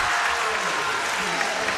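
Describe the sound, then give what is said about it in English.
A large crowd at a basketball game against Waterloo roars and applauds after a player hits a three-pointer, a dense, steady wash of cheering and clapping that stays loud and unbroken for the whole couple of seconds. “And the crowd roars.”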